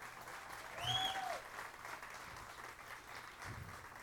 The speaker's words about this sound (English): I'd like Brother Mike to come. You guys give Brother Mike a round of applause.